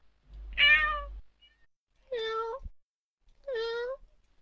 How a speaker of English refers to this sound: Is that a cat? Is that a cat?